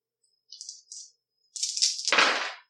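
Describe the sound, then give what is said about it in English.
Six dice rattle in two quick shakes, then tumble out in a longer clattering roll that grows louder and fuller before settling. No one speaks. “So you're going to be rolling 6 dice, and your panache is at skill level 3, so 4 is even better.”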